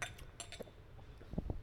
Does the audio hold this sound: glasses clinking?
yes